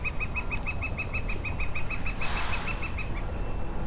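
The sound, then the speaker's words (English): A woodpecker calls in a steady series of quick, sharp notes repeated for several seconds, with a brief rustling burst partway through and low outdoor rumble underneath. “And that woodpecker agrees.”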